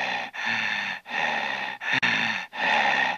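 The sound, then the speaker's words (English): Loud, raspy heavy breathing, about five long drawn breaths in a steady in-and-out rhythm with brief pauses between them, exaggerated and theatrical, with no talking. “Hello, it's me, the heavy breather from every horror film you've ever seen.”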